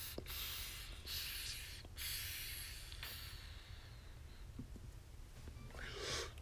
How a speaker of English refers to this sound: Let's take one big last hit before we get out of here.